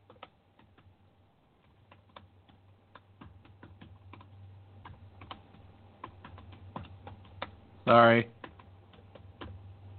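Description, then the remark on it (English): Irregular clicking of keys on a Bluetooth computer keyboard, fairly quiet, with a low steady hum underneath and a brief spoken word near the end. “My keyboard is acting up, by the way.”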